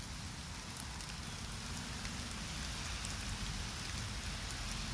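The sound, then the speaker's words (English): Steady rain patters onto a surface, a dense continuous hiss of drops with occasional sharper taps, even in loudness throughout, with no voices. “Can you hear the raindrops?”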